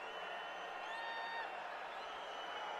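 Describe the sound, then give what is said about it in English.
A basketball arena crowd cheering at a Seton Hall versus Villanova game as Seton Hall extends its lead, in a steady, dense roar that holds for about three seconds, with a few thin whistle-like tones rising briefly above the noise. “The crowd getting back into it.”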